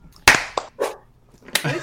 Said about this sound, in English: Everybody clap.